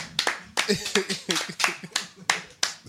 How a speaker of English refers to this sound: That's what it looked like, right? Clap it up, man.